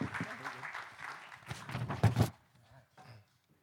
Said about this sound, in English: So with that said, John Kalfa, welcome to the stage. Yeah, round of applause.